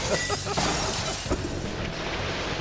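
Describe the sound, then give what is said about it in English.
In a Flex Glue Clear commercial, a sledgehammer slams into a heavy glass panel several times, each loud blow a dull, booming crack that rises out of a dense, noisy roar with no voices. “He used a sledgehammer on a piece of glass and it showed it like 5 times.”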